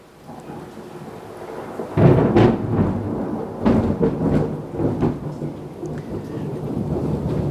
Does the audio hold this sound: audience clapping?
no